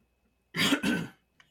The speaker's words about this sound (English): I meant to mute that cough. Oh, that's okay. Keep coughing. That's right. Yeah. Cough all you want,